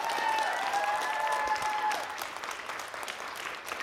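An audience claps together in sustained, dense applause, steady and fairly loud at first, with a brief high whistle-like tone early on, then tapering slightly in intensity toward the end.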